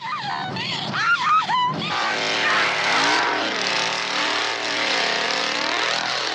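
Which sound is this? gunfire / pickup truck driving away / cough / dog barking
pickup truck driving away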